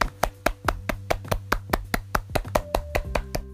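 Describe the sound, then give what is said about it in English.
A single pair of hands claps quickly and steadily, roughly five sharp claps per second for several seconds, over a low sustained hum in the background, in celebration of a 200 kg deadlift personal best. “That was me clapping, by the way, because you're bloody insane.”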